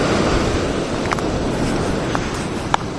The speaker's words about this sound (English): Welcome to KWR live at Montauk. So when you hear this, it may not be so live. Montauk is well alive. That's the ocean, 3 feet away, crashing right in front of me. It's night, I'm going in.